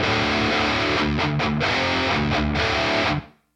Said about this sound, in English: This is a pretty common technique to give the distorted guitars more of a like more definition, so that you can actually hear the riff better. You have less overtones and less compression because of the distortion.